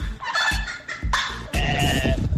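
A turkey gobbles loudly, its rapid, rattling calls coming in several bursts with brief pauses between them, no one talking.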